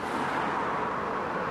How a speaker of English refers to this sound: The car is a 1951 Hudson, and it's one of the first cars built for high-speed travel on superhighways, and that's why I bought it. It's low, sleek.